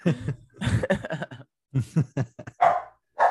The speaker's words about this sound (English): Whose dog that is?